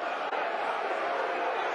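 A dense, sustained roar of the Millwall football crowd jeering Rotherham manager Steve Evans, a steady wall of many voices with no pauses, loud and unbroken for the whole short stretch.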